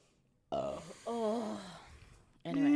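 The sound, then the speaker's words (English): A person yawns aloud, a drawn-out, breathy vocal sound that swells and sags in pitch, followed by another yawn starting up at the end; fairly loud, no other talking. “Why you yawn? Because I yawn all the time.”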